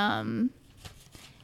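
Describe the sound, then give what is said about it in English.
A brief voice sound at the start, then two soft rustling swishes of paper pages being turned, each a quick papery sweep about a third of a second apart. “Can you hear my paper turning in the...”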